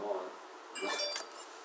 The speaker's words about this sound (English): Whose phone's going off, by the way?